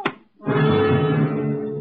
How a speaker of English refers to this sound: His gun butt cracked against my skull, and I staggered backwards.